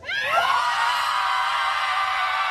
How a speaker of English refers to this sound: A bunch of mothers in Massachusetts, they got together to do something that I think everyone should do. Meet out at the local football field and just scream.